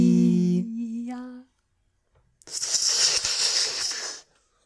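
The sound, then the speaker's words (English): A voice imitates an anaconda, first with a short rising vocal tone, then after a pause a long, loud, breathy hiss lasting nearly two seconds before cutting off. “Was that an anaconda? It was a snake.”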